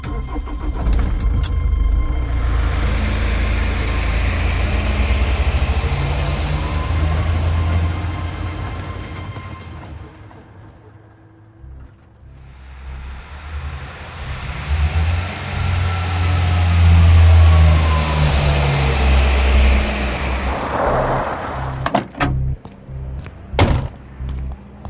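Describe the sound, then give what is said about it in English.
A heavy truck engine rumbles loudly, revving in rising and falling waves, easing off briefly before surging again as it drives away, with a few sharp thuds near the end. “Hey, you can't take that truck!”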